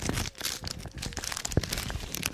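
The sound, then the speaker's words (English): Crinkly plastic wrapper of an unopened 1990 Major Indoor Soccer League trading card pack being torn open and crumpled, a steady burst of dense rustling and crackling with one sharp snap partway through, no voices. “1990 Major Indoor Soccer League unopened trading cards.”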